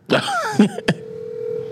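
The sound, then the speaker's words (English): A few brief clicks and murmured sounds give way to a steady, unbroken telephone dial tone humming at one pitch, moderately loud, continuing to the end, as a call is placed to a person who is at work. “I'm gonna call this other person. He's actually working right now.”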